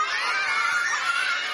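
A large audience shouts "Wake up, Harry" together on a count of three in one sustained, loud burst of mixed voices, many of them children, filling the whole moment with a bright, noisy roar.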